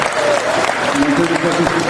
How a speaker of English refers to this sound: Firstly, there's a lot of hooting and hollering, but one thing that I didn't notice in the hooting and hollering was ask that man to answer the question.